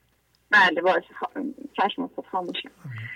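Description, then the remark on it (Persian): Muffled voices from a caller's television come through a narrow, tinny phone line, with steady chatter running for a few seconds at moderate loudness. “بی زحمت تلویزیونتون رو خاموش کنید با تلفن صحبت.”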